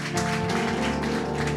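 A steady round of applause from a crowd, dense overlapping claps at a fairly even loudness, with a sustained low musical tone humming underneath.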